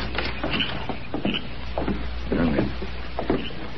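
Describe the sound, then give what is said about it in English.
A door being opened, with a few irregular wooden knocks and scrapes over a steady low background hum, with no talking. “Here's his door.”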